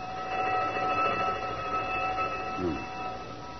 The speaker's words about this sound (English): That burglar alarm on Bernstein's fur store. It always goes haywire at 7:32. Been doing it for years.